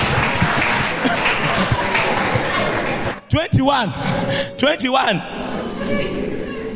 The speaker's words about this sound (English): Give the Lord a clap offering and a sound.